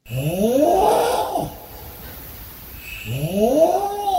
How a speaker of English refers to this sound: You are going to be blown away. Here is a snore.